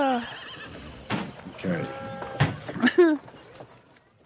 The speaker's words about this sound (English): I like that I'm hearing horses and the occasional sheep.